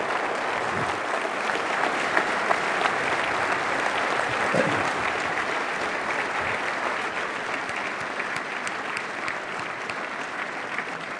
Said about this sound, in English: Very candid and upfront discussion, and a great round of applause for our guest of honor.